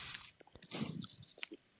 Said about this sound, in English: No, I just want to hear the chewing.